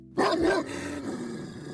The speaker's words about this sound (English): Oh, no. I think a dog is angry.